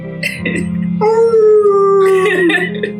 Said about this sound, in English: And inside is a fluffy werewolf doll. It has black fur and one eye. There is a drawstring in its back that causes it to howl when pulled.